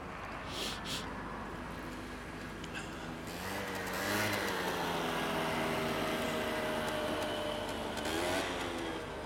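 An engine roars up and revs hard as a motorbike passes on the road, its pitch rising and falling, with steady road noise around it and no talking.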